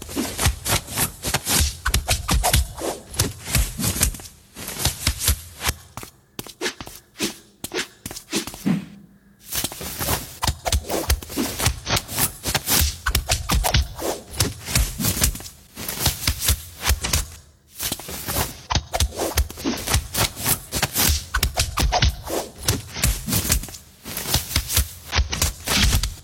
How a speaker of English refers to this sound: See, isn't every video better with kung fu noises? Every video. You can do anything with it.